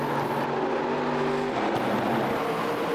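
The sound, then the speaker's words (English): Loud, steady engine roar from race cars at speed as the white flag is shown, a sustained droning whine that shifts pitch midway as the cars sweep past on the track. “What a drive by these cars.”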